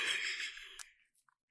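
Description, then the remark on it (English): A single drawn-out yawn, a breathy, airy exhale that fades over about a second, fairly quiet, followed by near silence with a faint breath at the end. “Is yawning poor form on a podcast?”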